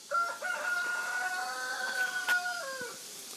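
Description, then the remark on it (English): A rooster at a recreated old Chinese village crows one long, loud cock-a-doodle-doo, holding a steady pitch before dropping off at the end, with faint background noise and no talking. “Let's go enter these roosters. Hi, Chinese roosters.”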